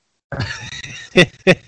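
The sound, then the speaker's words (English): A dog hacks: a raspy, wheezing snort drawn out for a moment, then two sharp, loud coughs in quick succession. No one speaks. “It's a mink and it's got a cough and it likes bacon.”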